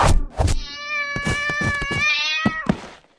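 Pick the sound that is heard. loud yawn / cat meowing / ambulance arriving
cat meowing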